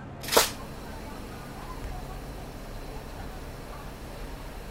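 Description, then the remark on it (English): A single sharp, crisp camera shutter click near the start, followed by a few seconds of steady, low ambient background noise with no further clicks. “You know, so the sound includes the sound of the quick sound of the shutter opens, then it continues until the shutter is closed.”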